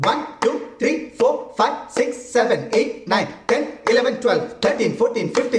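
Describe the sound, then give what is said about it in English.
Steady rhythmic hand claps, a dozen or so sharp strikes in quick succession, as one person claps different sequences, mixed with voices vocalizing along in short syllables that follow the beat. “Yeah, so you can hear the clapping. So he's clapping the different sequences there.”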